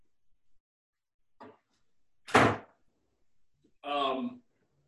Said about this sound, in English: Let me shut the door because people are yelling over here.